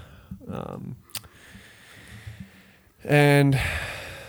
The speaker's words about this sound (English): I'm not yawning at you, by the way.